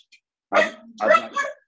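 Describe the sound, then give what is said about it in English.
A dog barks a few times in quick succession, fairly loud, with a brief pause between the first bark and the next pair. It is one of a household's five rescue dogs. “I've got five dogs, my bad.”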